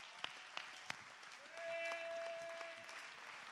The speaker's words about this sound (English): Clap your hands to give God the praise.